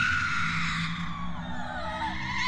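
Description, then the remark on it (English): A loud, sustained scream, shrill and strained, holds for a few seconds over a low rumbling background in a cabin, with no pause or break in its intensity. “A rocking chair was flipped over, then a loud scream was heard.”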